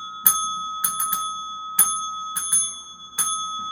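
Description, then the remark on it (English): A bright bicycle-style bell called Dinger dings out the rhythm of the Wedding March, eight crisp strikes in short groups on one ringing pitch, each note lingering, with no voices. “That was The Wedding March played on Dinger”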